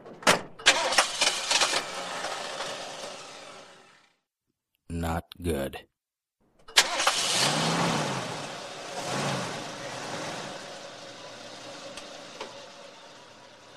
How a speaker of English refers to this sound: I sat down behind the wheel of my car and turned the engine.